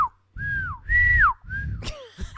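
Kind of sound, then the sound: human body sound, person whistling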